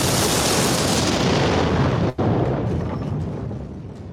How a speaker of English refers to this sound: Fire burns in the red fox and there is an explosion of power obliterating a blue fox.